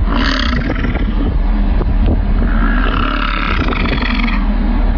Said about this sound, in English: this 9-second video of a male bison sticking his tongue out like it was a fraternity burping contest and just letting the grunts rip.